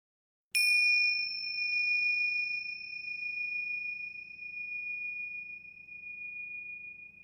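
A single bright bell chime strikes once and rings out with a long, clear, sustained tone that slowly fades over several seconds, with a faint low hum beneath it; a transition bell in a dream-interpretation show leading into its Behind the Dreams segment.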